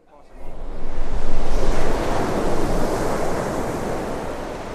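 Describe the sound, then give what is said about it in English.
Surf crashes onto the shore in a broad roar that swells over the first second or two, then settles into a steady wash of breaking waves with some wind rumble. “Back beside the sea”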